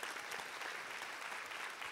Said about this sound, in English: Can we give a clap for her?